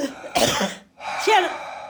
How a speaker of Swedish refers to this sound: Det är liksom torrhosta. Men om du drar ett djupt andetag.